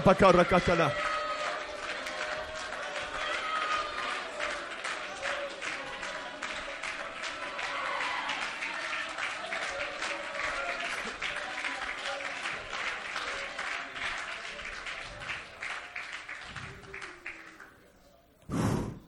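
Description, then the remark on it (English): A seated audience claps steadily while many voices call out and cheer together, a dense, sustained wash of applause and shouting that slowly thins toward the end. “Lift your voice, lift your hands, clap, whatever you feel.”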